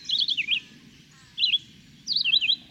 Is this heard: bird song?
yes